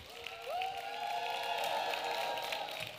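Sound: audience applause and cheering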